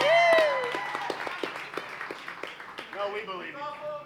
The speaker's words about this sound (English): Beautiful hat. Give her hat a round of applause.